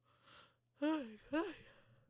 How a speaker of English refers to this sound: Take a shot every time I yawn in this episode, seriously.